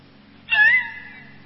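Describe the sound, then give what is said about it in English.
A person voices a single short, whiny moan like a hungry dog's, rising briefly then holding a nasal, almost cat-like tone. Fairly loud against a quiet low hum. “When a dog is hungry, you know by the sound it makes. Instead of barking, it moans.”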